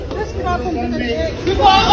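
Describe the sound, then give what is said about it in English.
A panicked crowd on a train platform shouting and talking over one another in agitated babble, several raised voices overlapping, growing a little louder and more frantic toward the end, while a dog is underneath a train. “And people are absolutely freaking out in this video that's been viewed so many times.”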